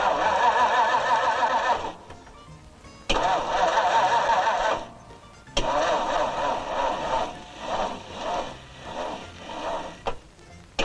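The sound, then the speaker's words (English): A used car's engine, with only 27,000 miles and given a complete overhaul the day before, turns over and roars to life in several abrupt bursts, cutting off and restarting, then runs with a loud, wavering, uneven revving that sputters toward the end. “Isn't that the quietest engine you've ever heard in your life?”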